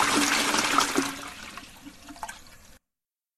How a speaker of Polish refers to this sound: Tak, będę wypuszczał wodę, wyciągam korek i żegnam się z wszystkimi.